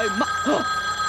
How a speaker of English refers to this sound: One ring! That's a telephone. I'll answer it. No, I must count them.